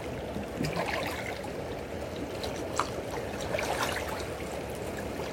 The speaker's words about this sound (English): It's a beautiful paradox this morning, close by the water is gently touching on the shores, and I feel calmness. And off in the distance, it's more of a roar. The energy of the waves picking up, hitting the rocks.